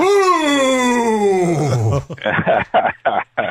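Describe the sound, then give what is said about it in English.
A man imitates a wolf howl with one long, loud, wavering wail that slides steadily downward in pitch for about two seconds, followed by a few choppy bursts of speech. “This is a Brooklyn wolf, okay?”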